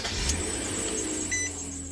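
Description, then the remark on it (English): A voice imitates the awful grinding noise a car made when started up: a harsh, continuous mechanical whirr with a thin high whine, held steady for about two seconds with a brief surge near the end. “your car and you start it up and it makes the most awful noise. Dude, what was it? Wasn't it like, was it grinding?”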